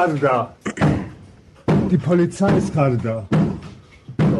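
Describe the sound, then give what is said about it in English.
A police SWAT team pounds heavy blows on a man's door a few times at irregular intervals, trying to break it down, while raised voices shout over and between the loud thuds. “So he's doing this, and they're trying to beat down his door.”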